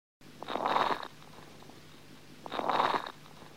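Coarse crackles in the lungs of an infant with bronchiolitis, heard on inspiration and expiration as two rough, rattling, washboard-like breath sounds with a faint silence between them. Each breath is full of crackly, popping texture, and no one speaks.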